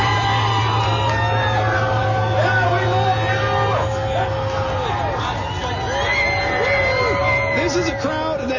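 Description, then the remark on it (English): A large crowd of President Trump's supporters outside the hospital where he was staying cheers, yells and screams continuously, with overlapping whoops and shouted voices rising and falling at a steady, loud level, a low rumbling hum running beneath. “The crowd that's been outside the hospital where President Trump has been, and they are cheering and yelling and screaming”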